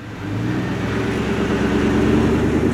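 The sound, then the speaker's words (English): A car engine hums steadily as the vehicle drives along, a low, continuous rumble with a slight rise in pitch, fairly loud with no voices. “put her body on the floor of his car and set out for a short, familiar drive.”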